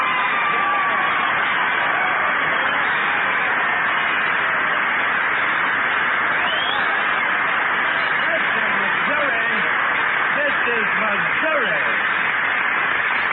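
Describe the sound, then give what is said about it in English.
A loud, steady roar of audience applause mixed with cheering carries on unbroken for the whole stretch, with faint shouted voices rising inside the clapping. “Oh, Jackson, listen to that applause.”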